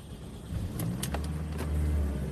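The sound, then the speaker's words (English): A car's air conditioning is turned on inside the cabin on a hot morning: a few sharp button clicks, then a low steady blowing hum that swells and holds. No one speaks. “I'm about to turn on this fucking AC.”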